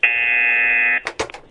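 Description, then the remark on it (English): A loud game show buzzer blares one flat, nasal tone for about a second, then cuts off into a few short, scrappy bursts of noise. “Have you got a vibrator to buzz? No, but do you know what? This is how sad I am. I've already prepared.”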